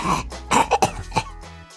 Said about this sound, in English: Cough sputter.